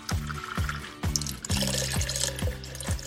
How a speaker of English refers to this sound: I'm gonna also add a cup of water.